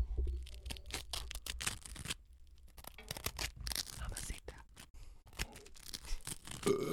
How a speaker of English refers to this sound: I'm going to butter this side because this side's crunchier. Oh, my God. You don't butter this side of the bread normally. Let him hear the butter.